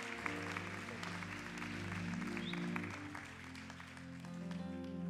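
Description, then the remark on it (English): An audience claps steadily for about five seconds, a dense wash of applause that holds at an even level while sustained keyboard or organ chords play underneath. “Can y'all give him a round of applause for being obedient and awesome?”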